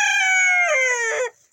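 A single loud rooster crow rings out in the early morning on a farm in Dalgan, Arizona, on the Navajo Nation, a bright, strained call held for over a second before its pitch drops and it cuts off abruptly into near silence.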